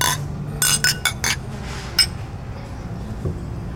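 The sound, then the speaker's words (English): Beer glasses clink together in a toast during a meal: a quick cluster of bright knocks, then one last ringing clink a moment later, against a quiet background hum. “Cheers.”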